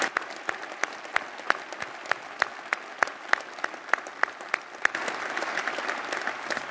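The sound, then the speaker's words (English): Audience applause thanking a man who regularly goes into facilities across the city, with crisp individual claps standing out over a steady patter, swelling into denser, fuller clapping near the end. No one speaks. “He said he never gets applause.”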